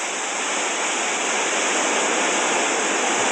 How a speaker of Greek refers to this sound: Έβαλα λοιπόν ήχο λευκού θόρυβου για να με πάρει ο ύπνος. Είναι αυτός ο θόρυβος.